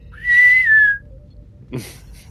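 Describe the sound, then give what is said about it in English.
A person whistles a single short note that rises, holds steady for about half a second, then slides downward and fades, followed by a brief breathy rustle close to the microphone. “And I will look off into the distance, as in like a Star Trek episode where they zoom in and give a little whistle.”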